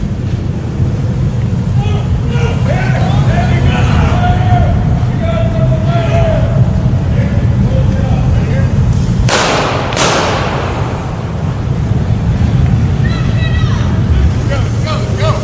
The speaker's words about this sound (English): I love it when I hear revving engines. Not really, it kind of scares me.